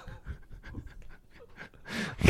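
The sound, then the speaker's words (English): Wind gusts on a golf course whoosh across the microphone in uneven, breathy bursts, building to a louder, broad rushing gust at the very end. No one speaks. “The wind here. You hear a whoosh.”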